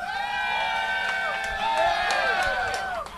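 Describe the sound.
A crowd cheers and shouts steadily for a few seconds, voting by cheers on who won round three of a contest. High excited voices and whoops layer over one another, swelling slightly toward the end before trailing off.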